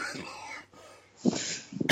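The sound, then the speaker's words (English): A person coughs a few times, sharp raspy bursts arriving in quick succession after a moment of quieter breathy noise. “Okay, and I'm going to be obviously editing that cough out.”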